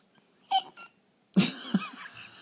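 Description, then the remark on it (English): Someone imitates a cricket chirp with their mouth: a couple of short, soft chirpy squeaks, then a louder, raspy burst with a second quick pulse, with no talking. “Then can you ventriloquize a cricket for me?”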